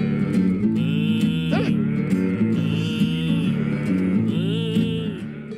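A playful novelty tune, used as a goal song for footballer Matty Rowe, fills the whole stretch, loud and steady, with drawn-out cow-like moos woven through the music, fading slightly at the very end.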